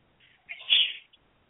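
A single sneeze: a faint intake, then a sharp, hissing burst that peaks and fades within about half a second. No one speaks.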